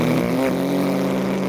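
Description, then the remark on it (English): A voice imitates the motorbike sound in a video game with a loud, steady, low buzzing drone that holds one pitch throughout, with a brief wobble early on and no speech. “That's like, that actually sounds better than the motorbike in the game.”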